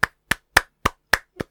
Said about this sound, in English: I think we should start with a 52-minute round of applause.